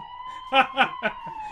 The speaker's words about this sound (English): We need a fire alarm noise for this.